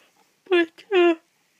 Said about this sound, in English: Sorry, I'm yawning. I get like that more and more, I guess.